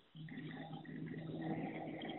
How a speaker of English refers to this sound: that's my 3D printer.